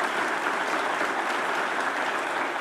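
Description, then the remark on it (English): A church audience claps steadily during a service to welcome a couple joining the church staff, a dense continuous wash of applause at an even level throughout, with no voices standing out. “by letting it be known by saying amen and applause.”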